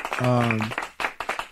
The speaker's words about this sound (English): Clap to that. Yeah.